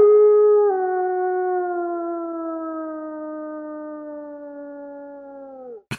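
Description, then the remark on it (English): A man imitates a wolf howl: one long, sustained wail that slowly sinks in pitch over about six seconds, fairly loud, ending in a short breathy break. “I think that idea for the wolf was a lot cooler in my head before I did that, but let's just roll with it.”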